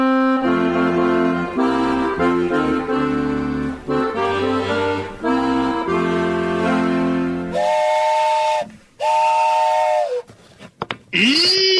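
A steam train whistle blows long, chordlike blasts, loud, then breaks into shorter hoots amid bursts of hissing steam that trail off into a final sputtering whistle.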